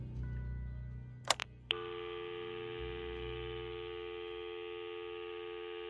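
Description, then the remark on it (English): A few quick taps on a mobile phone screen, clustered together, over a steady electronic tone that hums on throughout with no one speaking. “Hold on. I'm doing something on my phone.”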